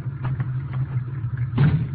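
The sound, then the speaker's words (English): A car engine idles with a steady low rumble, swelling briefly louder near the end as if pulling up. No one speaks. “Looks like Dave Fenton's car. Yeah, that is his car.”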